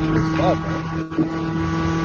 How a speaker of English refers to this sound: I mean, someone riding a moped.